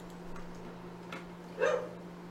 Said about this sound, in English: My dog's going crazy out there. Yeah, I know. I was distracted by the dog.